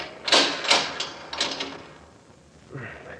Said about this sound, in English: All right, lower it to the floor while I open the door and snap on the lights.